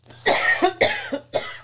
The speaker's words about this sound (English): She's coughing. She's coughing. So yeah, I'm all choked up.